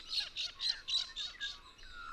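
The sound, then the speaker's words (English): A flock of galahs, big parrots with bright rouge-colored bellies and gray backs, squawks as it flies overhead. About six harsh, raucous squeals come in quick succession, fairly loud and shrill, with no one speaking. “That raucous squealing sound is a bunch of galahs, big parrots that are flinging overhead, beautiful birds with a bright rouge-colored belly, gray backs.”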